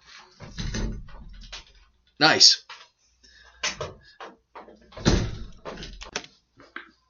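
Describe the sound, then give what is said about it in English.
A few loud thuds as a person beats his own head against a studio door, with a heavy bang near the middle and another later, mixed with shuffling and a brief spoken remark. “… literally just beat the hell out of his own head on the door of TMB Studios.”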